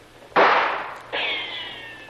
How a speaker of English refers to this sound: Boy, they're not bad shots. Almost feel the breeze from that one.